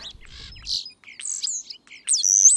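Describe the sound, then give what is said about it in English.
A European starling (Sturnus vulgaris) calls, stringing together rattling clicks, buzzy chatter and bright rising and falling whistles in a quick, varied jumble with no voices. “The scientific name for the starling is Sternus vulgaris, and quite frankly, its call is as pretty as its name.”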